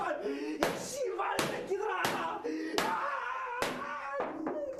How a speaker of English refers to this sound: You probably have heard … whispering as a voice over while he was going nuts by trying to bang on the door.